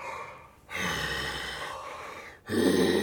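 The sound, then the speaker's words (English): A voice imitates slow, heavy, low breathing: a long rasping inhale, a brief pause, then a louder, rougher exhale, with no words. “Then I start hearing breathing in my neck.”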